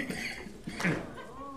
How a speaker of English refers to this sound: I don't cough all the time, just most of the time.